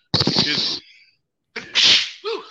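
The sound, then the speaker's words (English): A loud sneeze bursts out sharply, then after a second of silence a second explosive burst follows, trailing off into a brief voiced sound. “Bless you. Thank you.”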